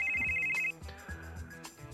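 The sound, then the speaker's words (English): A loud electronic phone ring trills rapidly for under a second, then cuts off, leaving a busy, steady background sound with no voices. “All right, phone rings.”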